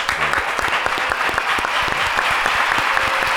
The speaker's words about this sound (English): That applause. Everybody smile once they hear it. Everybody know where the headphones get it in. We do have a crowd. Yeah. Always a live crowd, man.